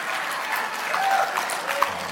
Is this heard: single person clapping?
yes